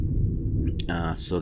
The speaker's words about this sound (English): I'm getting a thunderstorm here.